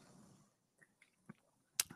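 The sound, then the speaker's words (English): Someone takes a sip of an alcoholic drink during a toast, with a few soft mouth and swallowing sounds, then a sharp glassy clink near the end, all quiet and short. “We're going to have a sip.”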